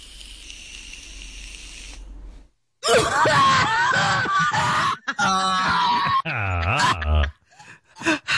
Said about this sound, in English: The thing is, after I hit my vape pen sippy, I always cough, but this cough, the coughs are different. Listen, so this is the COVID cough. Right? Yeah. And this is the sippy cough. Here I go.